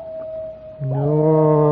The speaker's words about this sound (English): Somebody have unhappy doggy? No, that's a coyote, hey, boy. There's a full moon tonight. So you'll hear a lot of them. No, not a good sound. Make here, boy, spine tickle.